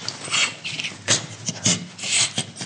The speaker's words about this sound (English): The zookeeper started tickling him and the gorilla started to make all these funny noises.